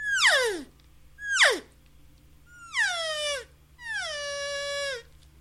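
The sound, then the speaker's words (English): Four elk cow mews blown on a small, compact, light elk call, each a nasal, whiny note sliding downward in pitch. The first two are short and sharp, the last two longer and drawn out, over a low steady hum. “So let me hear just maybe a couple cow mews.”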